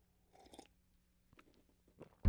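Someone takes a few quiet sips of coffee from a mug, with soft slurping and swallowing sounds, then a sudden louder low knock at the end.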